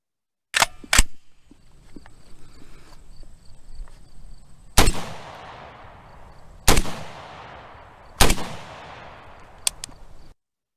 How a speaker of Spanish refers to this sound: El horror se apoderó de las personas en la plaza, mientras los sonidos de las ametralladoras disparaban indiscriminadamente en contra de los manifestantes.